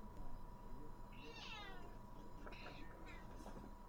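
A cat angrily lets out a drawn-out, rising meow followed by a couple of shorter, insistent cries over a low background hum.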